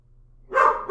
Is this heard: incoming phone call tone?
no